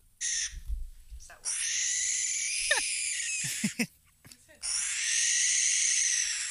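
A distressed barn owl gives three long, harsh, hissing screeches, the middle one broken by a few short clicks and squeaks before the final loud shriek.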